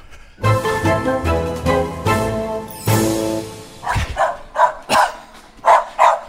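A neighbor's dog barks in a quick series of sharp, fairly loud barks, following a sustained harmonic stretch of sound; no talking is heard.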